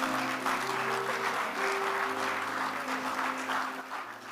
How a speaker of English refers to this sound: Give the Lord a mighty clap of praise.